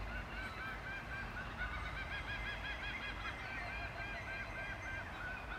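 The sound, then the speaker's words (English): A flock of birds calls continuously outdoors with traffic audible, a steady overlapping chorus of honking, goose-like cries repeating throughout over a low rumbling background. No one speaks. “Well, listen to those birds.”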